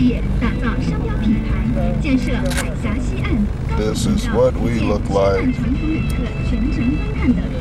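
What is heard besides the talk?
bus driving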